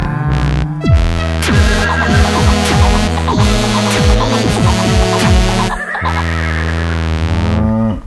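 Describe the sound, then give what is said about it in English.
A voice imitates a horse neighing, a loud, continuous, quavering whinny made of rapid descending wavering pitches that fills the whole stretch without pause, with no other talk. “I almost just spilled my drink because I got so excited for the horse sounds.”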